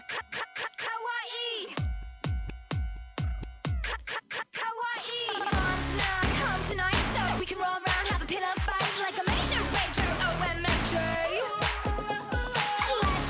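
A pop song plays from a video with a slightly muffled, low-fidelity sound. It opens with a choppy, staccato synth pattern, then a heavy, driving electronic beat kicks in at about five seconds and carries on steadily.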